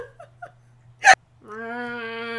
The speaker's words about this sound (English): I have the hiccups. Oh, my God. I don't even... I got too excited.